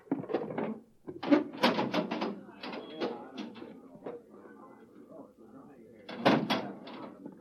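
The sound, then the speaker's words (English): A heavy manhole access door leading down to a northbound road is worked open with a series of clanks and scraping thuds, followed by a quieter rumbling stretch and one more loud clunk near the end. “Now stand away from the door”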